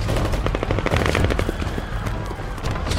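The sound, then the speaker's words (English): Dense, overlapping gunfire crackles nonstop from all directions, rapid shots in a chaotic barrage with no pause for the full three seconds, as people in a crowd shoot at each other. “Gunshots came from all directions.”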